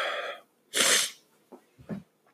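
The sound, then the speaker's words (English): A single loud sneeze: a short voiced intake of breath, a brief pause, then the sharp burst, followed by a couple of quiet sniffs. “I have to sneeze.”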